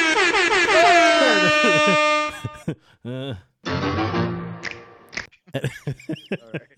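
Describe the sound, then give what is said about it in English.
A loud, sustained air horn blares for about two seconds, its brassy tone bending and wavering, then cuts off as people start talking. “Where's my air horn?”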